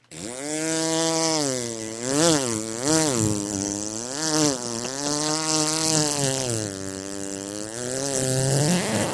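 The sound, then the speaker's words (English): Someone vocally mimics an idling string trimmer (weed whacker): a continuous, buzzy, engine-like drone lasting about nine seconds, its pitch wobbling and swooping up and down while the loudness holds fairly steady. “Hey, check out all those weeds over there that I need to whack.”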